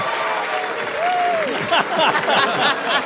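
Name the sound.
studio audience booing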